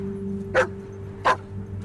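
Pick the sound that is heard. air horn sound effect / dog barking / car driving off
dog barking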